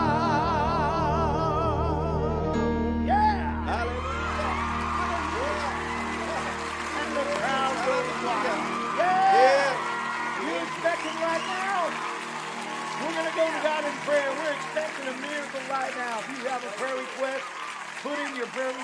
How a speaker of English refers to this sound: I didn't know there was double applause on there.